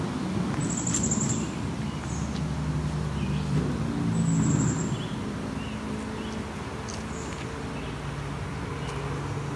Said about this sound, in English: Quietly hear a red-eyed vireo. I'm gonna try to go towards where he is, but maybe off trail.